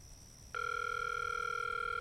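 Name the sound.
phone call ringing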